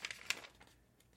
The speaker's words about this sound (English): I'm turning the page.